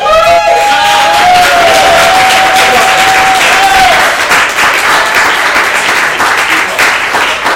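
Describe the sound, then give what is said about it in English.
Loud, dense applause from an audience voting by clapping for a performer at a show fills the whole clip, with a sustained high whistle riding over it for the first half before the clapping continues on its own. “So I guess we'll start with our clapping for Tom since he went first.”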